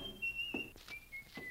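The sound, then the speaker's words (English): A man whistles a simple tune, clear, high notes that step between pitches, while a few soft thumps and rustles sound in the background. “He slammed the front door, and he was whistling.”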